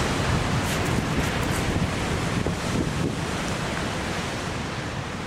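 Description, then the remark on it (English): Stormy surf roars continuously with crashing waves and gusting wind buffeting the microphone, a loud, dense wash of noise that barely lets up for the whole stretch, with no voices; storms battering Ireland's north, west and south in January and February 2014. “2014 started with a bang, with two of the worst storms to ever hit the country battering the north, west and south in January and February.”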